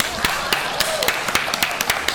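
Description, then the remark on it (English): Audience applause, with sharp claps landing at a steady quick pace over a dense, continuous patter of hands. It holds at an even, moderate level for about two seconds, with no voices. “Please clap.”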